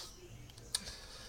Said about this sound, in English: who's typing? Who's typing?